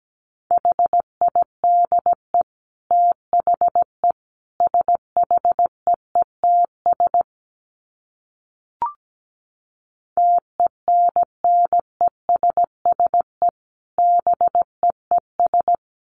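Morse code at 17 words per minute, sent as a steady mid-pitched tone, keyed in crisp short and long beeps, in two runs split by a few seconds of silence and a single brief click.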